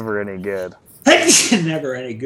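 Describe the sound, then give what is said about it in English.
A man is talking when a single loud sneeze, caused by a slight allergy, bursts out abruptly after a brief pause, followed by more speech. “Bless you.”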